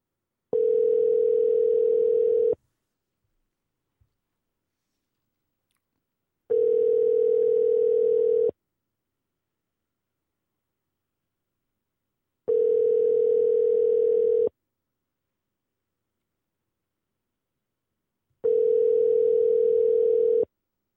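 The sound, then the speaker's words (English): A telephone ringback tone on an outgoing call to a Waffle House restaurant in Texarkana, Texas: four steady, clear rings of about two seconds each, separated by four-second silences, with no voices. “Dude, Waffle House is probably slammed right now. They're not going to pick up. Come on, Waffle House. Pick up your phone.”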